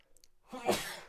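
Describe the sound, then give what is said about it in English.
A single sneeze bursts out after a brief quiet intake of breath, a loud, noisy blast that trails off with no talking around it. “God bless you.”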